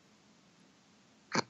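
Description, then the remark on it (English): A clumsy attempt at beatboxing into a microphone at the DXT party: after a quiet stretch, a single short, loud, wet burst of breathy mouth noise, like spitting into the microphone, cut off abruptly. “Why are you just spitting into the microphone? I was trying to beatbox, sorry.”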